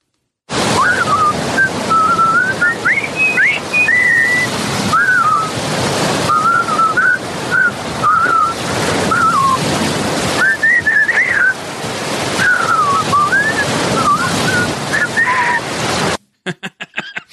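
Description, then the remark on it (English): A jaunty marching tune is whistled steadily for about fifteen seconds by four people walking together on a beach, over a constant rush of surf and wind, with no talking. “The bridge on the River Kwai, of it all, like it is such like a fun pop culture touchstone”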